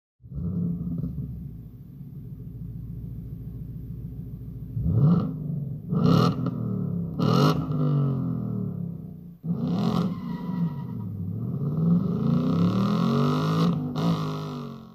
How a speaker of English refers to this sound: The all-new Ford Mustang will make its global debut in about 2 weeks. And in an effort to get us more geared up for the event, Ford is giving us a quick preview of its V8 exhaust note. Enjoy.